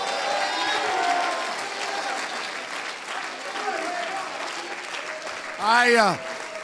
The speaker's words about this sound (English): Somebody clap your hands and shout.